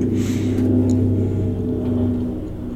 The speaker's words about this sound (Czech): Víte, nad námi lítá nějaký vrtulník.